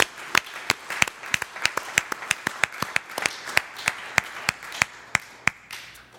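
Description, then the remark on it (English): A small crowd applauds with crisp, overlapping hand claps that keep a steady, lively patter for several seconds, with no talking over it. “And the brothers aren't here, but I'd like to give them a hand clap.”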